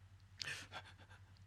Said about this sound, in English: That was me panting.